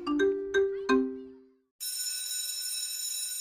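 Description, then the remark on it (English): A doorbell-like chime strikes three clear ringing tones in quick succession. After a short silence, a bright, shimmering electric bell rings steadily until the end. “Το Solidarity Now χτυπάει το κουδούνι!”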